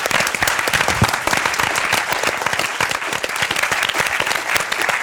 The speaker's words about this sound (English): Need two rounds of applause. Firstly, for our brave, brave pitchers.